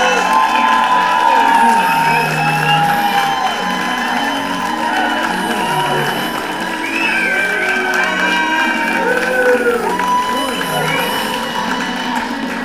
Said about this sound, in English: I'm like, boy, they're clapping hard for my intro, man!